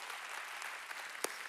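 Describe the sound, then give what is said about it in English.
A church audience at Go Church applauds King Jesus, a dense, steady wash of many hands clapping at even loudness throughout, with one sharper clap standing out near the end. No one speaks. “Can we applaud King Jesus together?”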